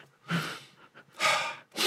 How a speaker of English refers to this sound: Maybe that's where all the sniffing's coming from.